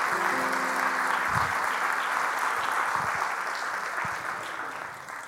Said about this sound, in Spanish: Y la iglesia dice, amén. Dale un aplauso al Señor si usted ha recibido la enseñanza.